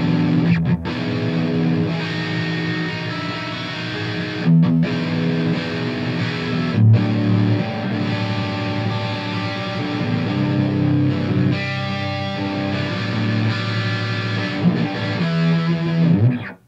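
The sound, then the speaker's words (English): Electric guitar played through a BB pedal used as a distortion pedal plays a steady, sustained riff with thick, gritty distortion, chords ringing out loud with brief pauses between phrases and no voices. “But anyway, so then it goes right to the BB. Just my little just using it as a distortion pedal pretty much.”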